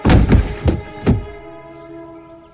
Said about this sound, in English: I backed away from his body as it fell to the floorboards with a final thud.